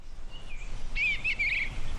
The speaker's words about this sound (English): Birds are chirping, a breeze is blowing, and chickens are clucking